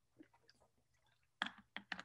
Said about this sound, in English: Let me take a sip of my water and give you this.